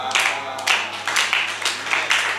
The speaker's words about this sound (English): Wow. Oh, you are clapping, it's weak.